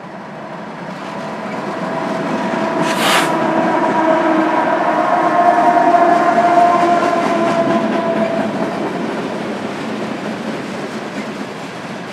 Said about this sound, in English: So yeah, here we have a freight train coming up from Denver. It's big. It's really long. I can't see the end of it. Wow.